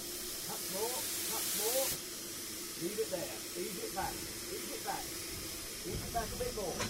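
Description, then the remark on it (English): A steam train engine starting on a hill, opening with a loud burst of steam hiss for about two seconds, then a steady low rumble with voices talking over it. “Starting on a hill is not the easiest thing to do. Not in this engine, sir.”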